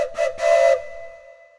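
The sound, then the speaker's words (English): A steam locomotive whistle gives two short toots and then a longer, louder blast, breathy with hissing steam, before its tone lingers and fades away. “The searchers agreed upon signal if Robinson was found would be the whistle of the locomotive.”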